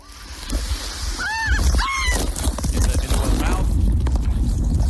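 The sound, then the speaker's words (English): A whale breaks the surface right beside a kayak, pushing up a school of fish, in a loud, churning rush of water that surges and splashes for several seconds, with two brief high-pitched cries early on. Recorded on a cell phone. “Well, here is what it sounded like the moment it happened. And the girl captured the whole thing on her cell phone.”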